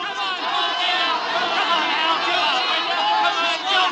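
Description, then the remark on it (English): A dense crowd in a Hollywood nightclub roars and shouts together in a steady, loud wall of voices without pause, many people yelling and chattering at once. “Then came a night, long after, a nightclub in Hollywood, the crowd yelling.”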